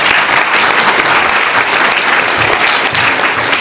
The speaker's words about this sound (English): So I'd like to give a large round of applause to Andrew.